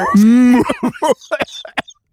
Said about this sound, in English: There's … famous cough.